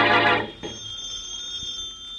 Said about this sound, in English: And in the Brumley home, the phone rings.